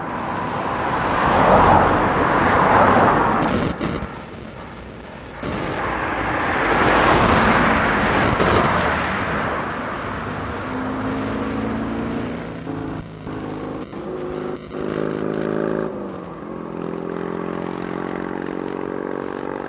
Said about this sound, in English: the cloud of homogenized anonymous noise that is the contemporary city soundscape, with its ubiquitous keynote, traffic.